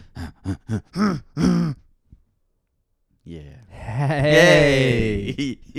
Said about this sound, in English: Let me clear my throat.